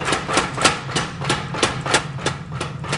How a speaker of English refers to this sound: Between blows on the anvil, a power hammer helps flatten the blade.